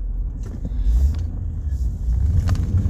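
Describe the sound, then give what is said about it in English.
Steady low engine rumble of a car driving along a road, with a continuous loud drone and faint passing traffic noise, no voices. “And yeah, it's even more traffic than there was before.”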